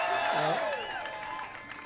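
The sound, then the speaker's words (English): A large crowd cheers loudly at an event with the governor of Florida, with many overlapping shouts and whoops over a steady wash of clapping, sustained throughout and easing slightly toward the end. “I mean, this crowd is incredible.”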